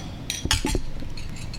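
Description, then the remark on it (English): Wine glasses of Murphy-Goode North Coast Sauvignon Blanc clink together in a toast: a quick cluster of three or four bright, ringing taps, with soft background noise and no talking. “All right, let's cheers this. Cheers. Cheers.”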